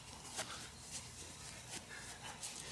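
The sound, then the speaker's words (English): A dog panting softly, with a few breathy huffs spaced irregularly over a couple of seconds against a low background hum; no one speaks. “A little bit of panting there.”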